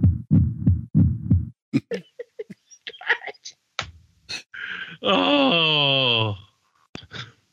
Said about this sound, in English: Does he still have a heartbeat?